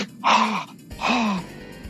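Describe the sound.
A voice imitates the dying gasp the character Harold makes when struck in the chest with a cleaver in a Friday the 13th film: two strained, breathy vocal groans, each about half a second long, fairly loud, separated by a short pause.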